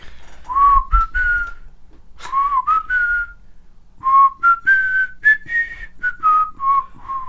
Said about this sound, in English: So earlier, I whistled the song, and he's like, "What the fuck is that?" So I try it and see if you guys can get it.